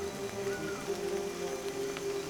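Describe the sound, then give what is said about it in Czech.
Heavy rain pours steadily onto the thick leaves of a tree canopy overhead in misty, warm, humid weather, a dense, continuous hiss with no breaks, underlaid by a constant low humming tone. “Visoko iznad sebe čuješ zvuk pljuska koji pada po debelom lišću krošnje.”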